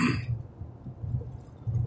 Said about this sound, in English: I got the sniffles. You could probably hear it.